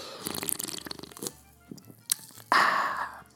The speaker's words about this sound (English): Oh, another orange vanilla Coke Zero break.